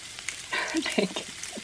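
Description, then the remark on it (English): Yam sizzles and crackles as it is stir-fried in a hot pan, a steady hiss with brief louder bursts as it's stirred, and a faint voice murmurs partway through. “So you're stir frying the yam.”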